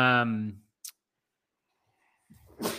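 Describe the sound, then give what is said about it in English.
A single sneeze: a voiced, drawn-in 'ah' followed by a sharp, hissy burst. A faint click sounds in the quiet gap between them. “Excuse me. Bless you. The sneezing narrative.”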